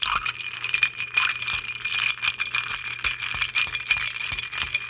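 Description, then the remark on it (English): Ice rattles and clinks steadily against a mixing glass as a Boulevardier cocktail of Widow Jane rye, Campari and Carpano Antica sweet vermouth is stirred, a continuous bright, tinkling churn with no talking. “All right, that's all in the mixing glass, and I'm just going to give this a good stir.”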